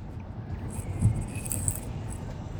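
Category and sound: household object, whistle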